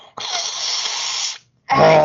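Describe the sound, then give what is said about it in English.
Someone blows their nose, runny from laughing hard, in two loud, rushing bursts: a long, steady honk-like gust, a short pause, then a second harsher blow. No talking. “Let me blow my nose because I'm just laughing so hard.”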